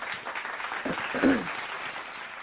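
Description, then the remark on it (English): A clapping sound effect: a steady, dense patter of many hands clapping together, continuing at an even level for a couple of seconds, with a brief murmur of voice partway through. “I'm going to throw some claps on it.”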